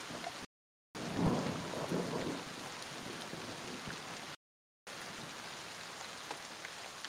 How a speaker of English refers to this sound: Yeah, I mean, you're in an open field. There's a few trees kind of to the north, maybe a couple of miles down the way, but for the most part, it's open plains. Well, not a great place to be in the middle of a lightning storm.